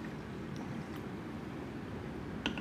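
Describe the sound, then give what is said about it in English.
Limeade is poured out of its container down to the 16-ounce line: a steady, continuous stream of gurgling and splashing, with a couple of small clinks near the end. No one speaks. “I happen to have one that I've already poured some in before, so I'm going to pour it out to the line, again, which is 16 ounces.”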